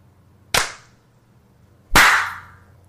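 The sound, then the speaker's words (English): Two sharp hand claps about a second and a half apart, the second louder with a longer ringing tail, over a faint low hum and no talking. “All right, clap at 50.”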